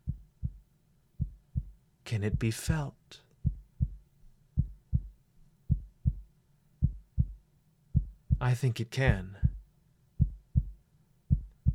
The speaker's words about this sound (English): tell me if you detect Daphne's faint heartbeat